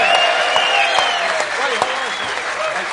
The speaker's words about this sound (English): Well, let's give them a round of applause coming all the way back home.